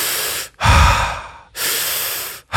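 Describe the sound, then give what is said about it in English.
Forceful, rapid warrior breaths through the mouth as a breathing exercise, a quick inhale followed by a sharp exhale, repeated in a steady rhythm with brief pauses between them, loud with no talking. “Warrior breathing is just a quick inhale and exhale through the mouth.”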